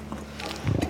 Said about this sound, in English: That was a cow bringing her cud back into her mouth and chewing it up again. That's what they do. And that's also how she releases the methane built up in her rumen. Several chews later, she swallows and sends her cud back down.